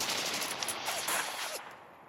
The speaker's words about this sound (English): And you hear an explosion and gunfire in the background.